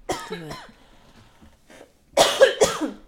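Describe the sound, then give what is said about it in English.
A close, loud coughing fit: a burst of harsh coughs, a short pause, then another cluster of several rough, strained coughs in quick succession. “I got a cough. Hold on.”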